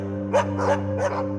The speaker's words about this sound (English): Maybe a dog barking in the distance.